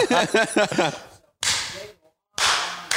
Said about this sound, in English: So, yeah, Mr. Producer, help me out here. Let me clap so we can edit this out.